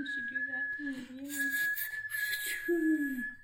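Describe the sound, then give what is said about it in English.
A whistle blown to be saved by search boats, in one long, steady, shrill tone that holds for several seconds, with a voice making low sounds underneath. “Now that Jack has fallen off of the door and is dead, I'll also jump off so that I can blow a whistle and be saved by search boats.”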